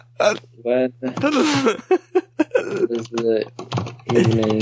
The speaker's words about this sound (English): Oh, this is actually good because I can hear if my keyboard is too loud on the recording as well.